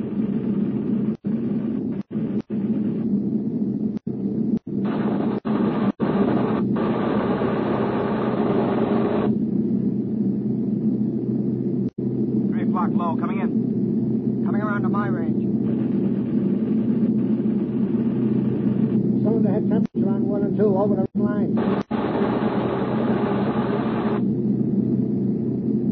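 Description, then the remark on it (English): A steady, loud low-pitched engine drone fills the whole stretch, like aircraft engines in flight, with a few faint sharp clicks and brief higher whines riding on top. “These engines have got to get us back.”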